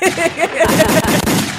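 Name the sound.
gunshot sound effect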